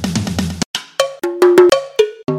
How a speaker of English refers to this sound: And please, whatever you do, don't use them like drumsticks and play a solo on all the dishes.